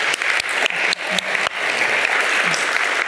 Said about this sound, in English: In fact, I'd like to ask for another round of applause for the collective effort.